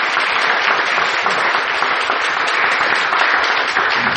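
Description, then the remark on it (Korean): An audience applauds steadily for everyone who worked hard, many hands clapping in a dense, even wash of sound that holds at a fairly loud level for the full four seconds without any voices. “수고하신 모든 분들께 박수 한번 드리겠습니다.”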